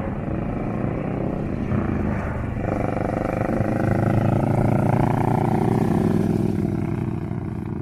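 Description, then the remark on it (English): Loud, steady roar of motorbike engines passing by, with the engine pitch rising and swelling through the middle before holding steady. Several engines blend into one continuous drone with no talking. “But here the bikes come.”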